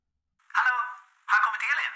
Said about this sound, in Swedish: Då ser hon att det är någon som ringer och i samma stund kopplar hon att det är ringsignalen och inte alarmet hon hör.